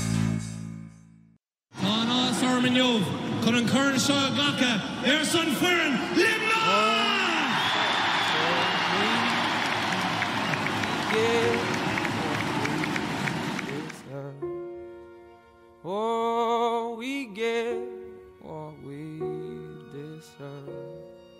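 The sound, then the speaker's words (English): A large crowd at a hurling match roars loudly for about twelve seconds as Limerick's Garrod Hegarty puts the ball over the bar, a dense wash of overlapping shouts and cheers, then drops away as a single voice talks over quieter background noise. “The crowd will roar this one over.”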